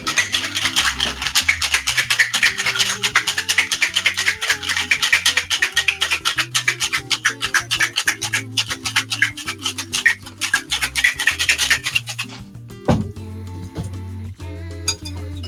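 Ice rattles hard inside a cocktail shaker in a fast, steady rhythm for about twelve seconds, a loud gritty clatter, then stops abruptly with a single sharp clink.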